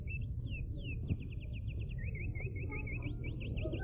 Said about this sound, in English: Those were authentic Indiana birds.